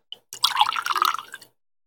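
About a shot or two of Yingling's Oktoberfest pours into a glass for about a second, a steady bright splashing gurgle preceded by a small clink, clear with no talking.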